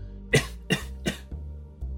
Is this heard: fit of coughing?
yes